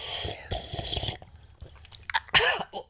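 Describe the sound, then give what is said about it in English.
Noisy slurping sips of tea from a cup, followed by a few quieter mouth sounds and a swallow, with a sharp throaty burst near the end; no one speaks. “Pause for tea sip.”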